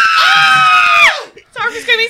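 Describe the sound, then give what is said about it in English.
A person screams in shock, a loud, high-pitched scream held for about a second before its pitch slides down and breaks off, followed after a brief pause by excited, animated voices talking. “Sorry for screaming.”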